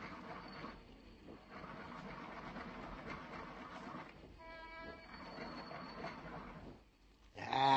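A steady mechanical grinding churns for several seconds, with a brief whining tone rising out of it midway, then stops before a sharp burst of noise at the end.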